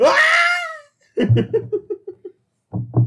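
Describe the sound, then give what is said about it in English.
A Wilhelm scream sound effect: one loud, shrill wail lasting under a second that slides downward in pitch, followed by two rhythmic bursts of laughter. “You hear and like the kids. Wilhelm scream.”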